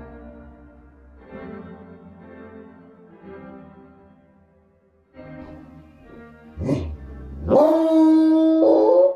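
A pack of tracking dogs on a fleeing man's scent howls in long, wavering cries that start moderately soft and swell louder near the end, with a sharp yelping burst breaking in just before the final loud chorus.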